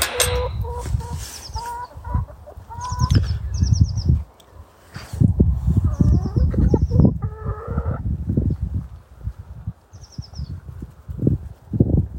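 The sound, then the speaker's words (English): Several hens, kept for two or three months and expecting to be fed, cluck and squawk in an excited, overlapping chorus, with bursts of short repeated calls and some scuffling, continuing for about twelve seconds. “And obviously we've had the hens now for two or three months.”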